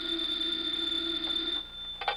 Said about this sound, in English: A short while later, at a nearby FBI field office, Special Agent Jim Taylor is at his desk when the phone rings.